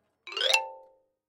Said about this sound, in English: It's a push notification from that stupid Spectral Bitter app. Ugh, I hate push notifications.